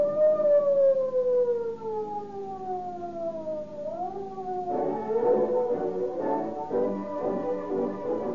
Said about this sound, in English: In the thrilling true story to follow, you will hear police cars roaring down the street at full speed, sirens shrieking, shots flying, as the police cars steadily close in on the escaping bandits.